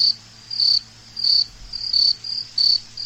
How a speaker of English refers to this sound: Yeah, crickets. Major crickets there.